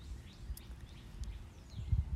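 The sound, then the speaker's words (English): Faint, scattered bird chirps and short tweets outdoors on a damp, cloudy day of about 72–73 degrees with a light breeze, with a low breezy rumble underneath and no one talking. “So the birds seem to be very grateful that I got bird seed out.”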